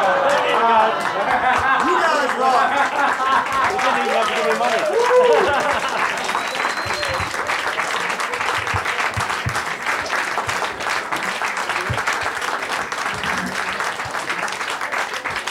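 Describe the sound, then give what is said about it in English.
An audience applauds both sides of a debate, winners and losers, after the vote, in a steady, dense wash of clapping that lasts about fifteen seconds. Murmuring crowd voices mingle with it during the first several seconds before the clapping carries on alone. “I hear your applause for both sides, the winners and the losers.”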